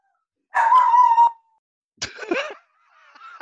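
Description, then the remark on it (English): A dog gives a drawn-out, whining bark, then a sharper yelp and a softer trailing whimper, three separate vocalizations with pauses between them and no talking. “Oh, that was your dog?”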